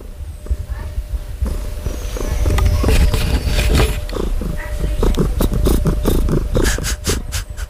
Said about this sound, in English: That's some intense purring. That's intense purring. It's funny, all these cat sounds are purring but not meowing.